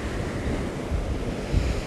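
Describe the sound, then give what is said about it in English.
Steady, full rushing of a deep river pouring through a narrow gravel channel as it comes around a bend past a gravel bar, a dense continuous wash with low rumbling surges, fairly loud, with no voices. “And it's so deep, and there's just so much water flowing through there.”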